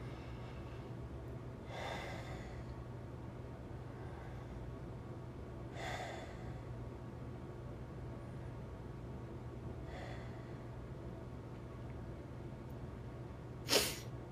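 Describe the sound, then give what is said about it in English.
Three slow, deep breaths, each a soft airy rush spaced about four seconds apart over a steady low hum, followed by a brief sharp click near the end. No one speaks. “And we'll begin by taking three deep breaths.”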